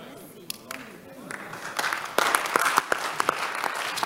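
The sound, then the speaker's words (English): An audience claps, starting with a few scattered claps and swelling into fuller, uneven applause over the last couple of seconds, with murmuring voices mixed underneath. “Have you seen that you cannot clap?”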